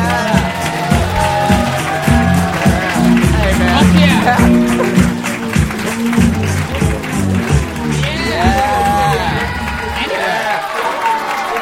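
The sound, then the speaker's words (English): A live comedy show audience roars and cheers with scattered clapping as comedians Sinbad, Sebastian and Jimmy Carr are introduced, a dense, loud wash of voices that holds steady for about ten seconds before dropping away near the end. “Listen to this fucking roar!”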